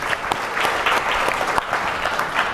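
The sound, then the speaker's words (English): Steady audience applause for the experts on a panel at a CSIS session, a dense patter of many hands clapping at an even loudness throughout, with a few sharper claps standing out and no talking over it. “I think we can give them a big applause.”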